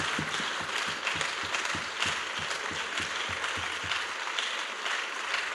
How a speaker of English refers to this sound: Let us give God a mighty hand clap.